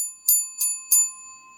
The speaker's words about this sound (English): Oh, wait. Can you hear the bell?